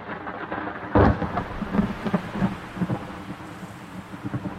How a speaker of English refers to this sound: It's pretty much 24/7 gale force winds. It rains 325 days per year. You're lucky if you get an hour of sunlight a day.